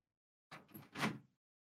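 A desk drawer is yanked open with a quick rattling clatter, two or three short bursts of metallic banging close by, then silence.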